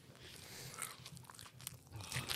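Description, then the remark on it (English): Wet, close-up chewing and biting sounds of someone eating a 7-Eleven pizza slice right by the microphone, with crunchy, smacking mouth noises continuing steadily throughout and no talking. “Okay, just take another bite and talk into it again.”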